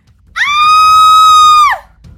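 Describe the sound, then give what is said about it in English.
A woman lets out one long, loud, high-pitched scream, held steady for over a second before it drops off sharply, with no talking around it. “who had been coming around, screamed.”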